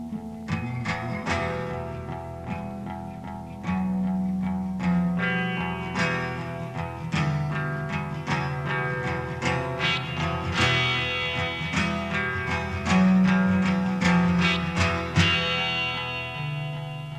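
A blues rock song plays at a steady, loud level: instrumental, with guitar tones colored by distortion and effects, sustained bass notes and sharp plucked attacks recurring throughout, and no singing.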